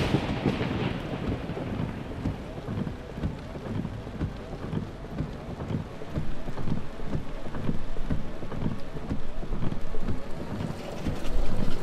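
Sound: rain falling at night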